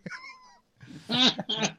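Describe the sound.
A man's voice imitates a cat, giving a short tonal mew followed by a louder, drawn-out meow with a brief second yowl, fairly loud, with no other sounds.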